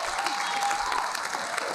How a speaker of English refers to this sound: I know you're clapping, but who will go in there and tell them that?